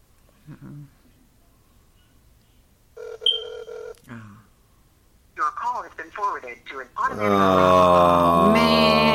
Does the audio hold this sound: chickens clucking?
no